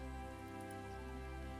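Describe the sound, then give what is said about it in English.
Steady rain falls in a continuous, even wash of sound with no breaks, fairly faint and constant throughout, with no voices present; it has been raining for about two weeks. “The whole time you've been here, it's been raining.”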